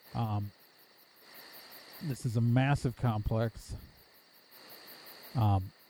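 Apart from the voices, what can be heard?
crickets chirping at night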